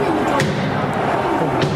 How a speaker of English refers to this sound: protesters banging on doors as they breached the halls of Congress to delay the business at hand.